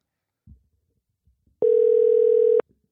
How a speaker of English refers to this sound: let's get Giles on the phone. Let's see here. We're going to call him right now.